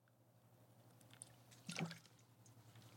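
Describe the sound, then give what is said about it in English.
A single quick sip of water from a glass, soft, with a brief wet slurp midway through over a faint steady electrical hum and no talking. “Let me get my water.”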